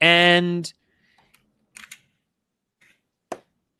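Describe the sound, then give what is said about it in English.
A short burst of voice opens, then a few sparse, crisp key clicks on an RGB computer keyboard land at irregular intervals with quiet gaps between them, fairly light. “Awesome RGB keyboard.”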